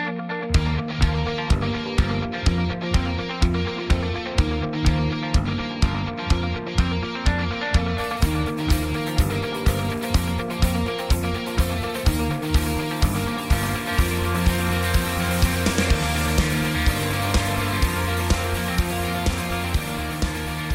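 A full-band rock song plays with a steady, driving drum beat, dense guitars and bass, building in intensity after the first few seconds and staying loud throughout, with no talking.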